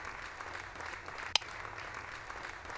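A recorded crowd applause effect: dense, steady clapping that holds at an even, moderate level throughout, with one sharp click about halfway through and no voices.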